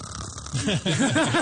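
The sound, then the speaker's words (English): A person mimics snoring with their voice, a few quick, rhythmic snorting-like vocal sounds in a row, fairly loud after a brief quiet start. “He didn't go up to them and snore. That's what I'm doing.”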